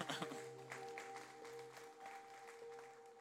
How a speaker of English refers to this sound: Oh yeah, you can clap.